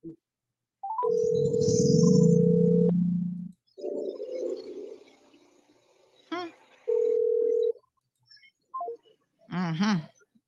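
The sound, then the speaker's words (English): A phone line rings out with steady electronic ringback tones, two long bursts separated by a pause, with no one picking up; muffled background noise and brief chirpy sounds fill the gaps. “Not answering the phone this morning.”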